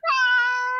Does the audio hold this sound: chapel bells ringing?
no